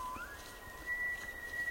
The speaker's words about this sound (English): Jonathan Storm recorded these two elk bugling across a high meadow in Yellowstone National Park, making their best show for females on a cool autumn evening.